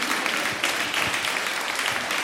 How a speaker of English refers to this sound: You can clap for that. I'm all about that.